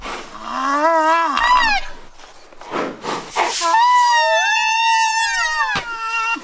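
A baby rhino named Daisy calls in two long, loud, wavering squeals with a breathy snort between them; the second cry rises and sustains for several seconds.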